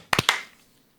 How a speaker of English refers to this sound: And then clap sync. 3, 2, 1.